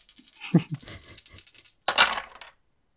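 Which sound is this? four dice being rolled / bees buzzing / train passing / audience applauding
four dice being rolled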